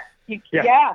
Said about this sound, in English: We have a killer dog in the house.